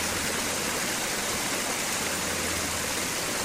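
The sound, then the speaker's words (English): Water flows steadily over the reflecting pool fountain in the meditation garden of the Moore Center, running over quotes from Harry T. Moore and Martin Luther King Jr., a continuous, even rushing and splashing with no pauses, moderately loud, with no voices. “Most recently, the Moore Center unveiled a meditation garden, reflecting pool, and gazebo. Water flows over quotes from Harry T.”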